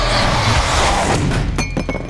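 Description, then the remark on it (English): Thor's mug hits the ground with a sharp metallic clank after he is knocked over in a hall, followed by a few quick rattling knocks and a brief ringing tone, heard over a loud, steady rumble of background noise. “His mug fell to the ground with a clank.”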